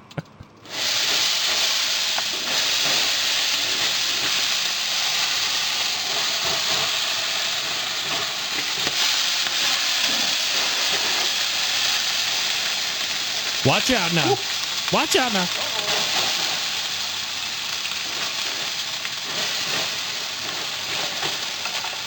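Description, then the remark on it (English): A loud, steady hiss of rushing steam fills the whole clip as a barbecue heated to over 300 degrees is unlatched and opened for a steam clean during seasoning, while a man briefly calls out warnings over it. “And assume it's going to be very steamy.”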